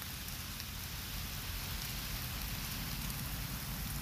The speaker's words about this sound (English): Enjoy the pitter-patter the drops of the rain.